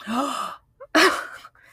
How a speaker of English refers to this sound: Gasp.